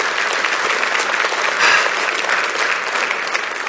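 An audience breaks into steady applause, a dense wash of many hands clapping at an even, fairly loud level for a few seconds with no one speaking.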